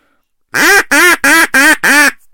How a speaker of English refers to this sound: And then the other call is the greeting call, which is just a series of quacks with the tempo and cadence and volume starting to trail off.